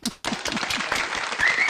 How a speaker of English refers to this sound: And you're getting a Lifetime Achievement Award from that? From the association. Broadcasters Association. Wow. Yeah. Another round of applause.